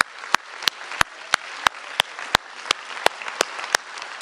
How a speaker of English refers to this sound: Come on, let's give God praise. Come on, put your hands together and clap.